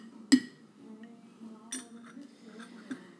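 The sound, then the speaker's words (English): A bright, sharp clink of glasses of a bourbon and cinnamon drink rings out in a New Year toast, followed by a few softer glassy taps, over a low murmur of room noise. “Cheers. Cheers. To the new year, right?”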